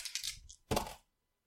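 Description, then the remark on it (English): Dice rolled to resolve a knife fight clatter and rattle across a hard tabletop, a quick tumbling burst followed by a louder knock and short skitter before settling into silence. Fairly quiet, with no voices. “All right, so let's start with your whatever your dice you have.”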